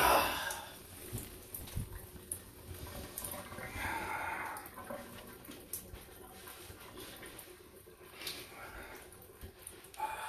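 Steady rushing water from a cold shower runs throughout, a broad hiss like a shower spray, with occasional splashes and shifts in the flow, and faint brief sounds beneath it.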